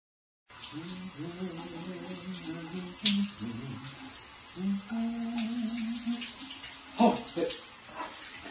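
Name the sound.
shower water running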